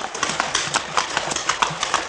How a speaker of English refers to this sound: I hear the running water up ahead. Yeah, here's where we cross. I keep a tight rein. The creek bed has a rocky bottom, and your horse is liable to stumble unless you keep his head up.